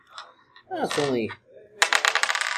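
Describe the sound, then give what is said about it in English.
A brief voice, then a quick burst of dense, bright clattering as dice are rolled across a hard tabletop during a game, fairly loud, lasting under a second. “I tell you to roll dice, you see.”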